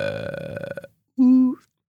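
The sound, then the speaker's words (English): A rattling, pulsing burp is followed by a loud, sustained low burp held at a steady pitch to mimic a foghorn blast, with a brief upward squeak at its end. “I guess let's do an honorable mention Foghorn though, you know.”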